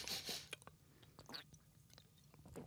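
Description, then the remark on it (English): Wet mouth sounds of someone sipping and swallowing a 5% gingerbread-flavoured beer brewed in Missouri from a can, with a few short slurps and smacking noises. “It smelled like gingerbread cookies when I took a sip.”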